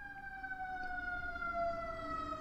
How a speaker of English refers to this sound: Okay, I'm sorry for that ambulance going by. I don't know if you heard it or not.